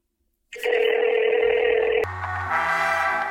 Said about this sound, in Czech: Zavolali jsme jako správní investigativní novináři Nikolasi Hlavovi, aby jsme zjistili proč. Už to vyzvání.